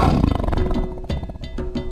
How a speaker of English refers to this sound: But what does a lion do if it's happy? They chuff. Chuff? A chuff is a low-intensity sound that big cats emit in short, loud bursts. Air is blown through the nostrils while the mouth is closed, producing a kind of a growl snort.